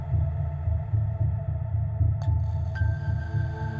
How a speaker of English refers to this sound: Do you remember? We call you from deep inside, the drumming, humming inside. We call you back through the beats of the heart to synchronize.